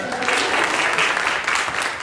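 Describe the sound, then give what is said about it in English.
Loud, sustained audience applause, a dense wash of many hands clapping steadily with no pauses, filling the whole stretch with a bright crackling texture. “Like, can y'all give it up for them?”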